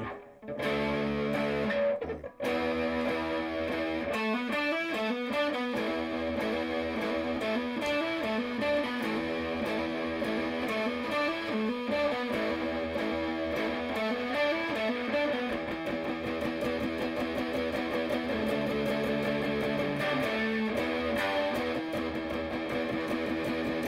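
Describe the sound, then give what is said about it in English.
Heavily distorted electric guitar through an Orange amp, playing loud, sustained riffs of chugging low notes and sliding lines, with a brief cut near the start and no talking. “Anyway, here, play through the orange for a little bit before we're done.”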